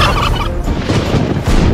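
bird, turkeys gobbling

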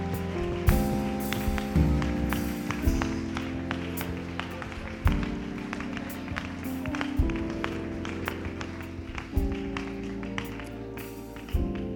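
crowd, audience clapping and shouting

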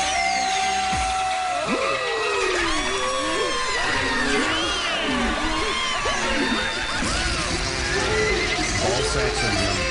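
animal, horse neighing

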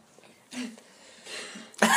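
human body sound, coughing fit

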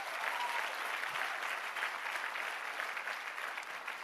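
crowd, audience applauding

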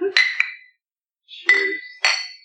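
household object, glasses clinking

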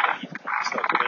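animal, dog vocalizing

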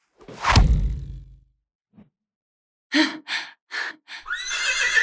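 animal, horse whinnying

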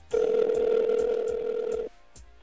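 signal or alarm, telephone ringing

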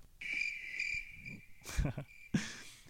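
insect, cricket chirping sound effect

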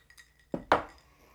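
household object, glasses clinking

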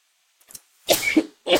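human body sound, sneeze

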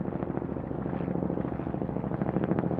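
vehicle, military helicopters flying overhead

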